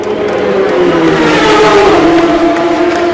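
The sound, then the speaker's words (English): Toyota race car engines roar past at full throttle on their final lap, a loud, continuous snarl whose pitch climbs steadily as the cars accelerate, with a faint crowd murmur underneath. “As the Toyotas go through on their last lap, that's it.”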